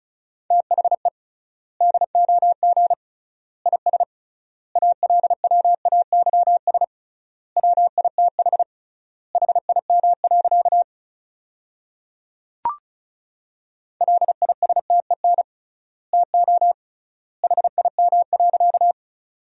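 Rapid Morse code at 35 words per minute sending sentences built from the top 400 words, with triple word spacing: a steady mid-pitched beep keyed into quick strings of dots and dashes, separated by long pauses between words, with one brief click partway through.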